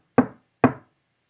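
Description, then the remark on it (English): Two sharp knocks on a hard surface, fairly loud, spaced about half a second apart, each with a short woody decay and silence around them, demonstrating knocks heard on a floor. “She's like, well, we would hear knocks on the floor. It sounded like it's coming from the basement. And she said, and it would be in triple.”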